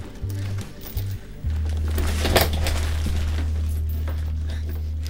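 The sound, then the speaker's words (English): A harsh, overmodulated teleport jump effect, loud because the audio channel is blown out: two short low buzzing pulses, then a loud sustained droning hum with a crackling, distorted surge partway through, no voices. “A lot of overmodulation on the jump sounds in this last couple jumps there.”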